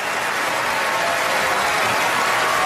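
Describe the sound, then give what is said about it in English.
Steady, dense audience applause for a man at an event, heard in a played recording, fills the whole stretch, a continuous wash of many hands clapping at an even loudness with no voices standing out. “He's getting applause.”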